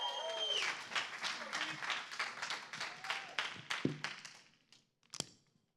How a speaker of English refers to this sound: Big round of applause.